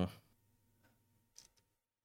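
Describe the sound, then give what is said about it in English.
A few soft, irregular computer keyboard clicks. Two quick taps land near the end as the typist presses keys twice in a row. “I keep double typing lately.”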